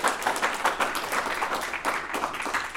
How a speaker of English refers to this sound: Give that a big round of applause here.